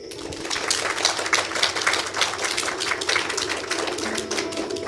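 An audience applauds, a dense, steady crackle of many hands clapping at once that holds at an even, fairly loud level for the whole stretch, with no voices over it.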